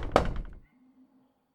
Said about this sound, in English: Just as he finished up dinner one evening after a long, grueling day of work, he got a knock at his front door.